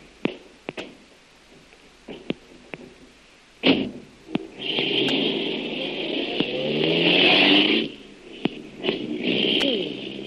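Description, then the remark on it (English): A few sharp clunks and clicks, then a car engine roars and accelerates with a rising whine, dropping off before more thuds and a steady hiss. “Here's my car, Lil. Hop in.”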